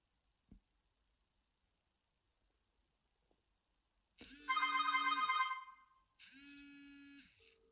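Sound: mobile phone ringing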